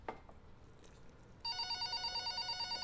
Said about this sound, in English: Phone. I'll get it.